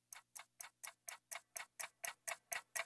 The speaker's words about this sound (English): Like, there's the ticking clock, right?